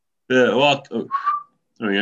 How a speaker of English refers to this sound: I've recently started whistling. Oh, I was going to ask you to whistle.